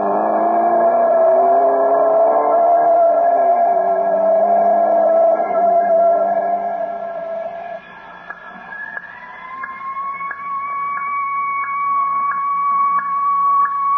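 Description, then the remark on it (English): An ambulance siren sounds loudly and continuously, its steady electronic tone sliding lower, then climbing to a higher held pitch with faint rhythmic pulses, no voices present. “No, it's an ambulance, all right.”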